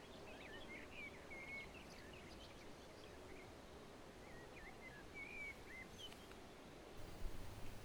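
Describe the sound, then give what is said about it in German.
Several birds sing and chirp at dawn as the sun rises, short warbling phrases and whistles scattered over a soft, steady outdoor hiss, with no one speaking. “Mehr Vogelstimmen erfüllen die Luft und grüßen die Sonne, deren Licht gemächlich anfängt, Wärme zu schenken.”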